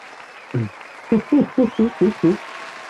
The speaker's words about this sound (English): So she deserves this clap.